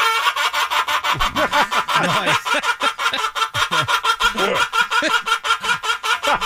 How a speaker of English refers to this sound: I have another chicken clip. Ooh. This was a chicken that laughed at a farmer's joke.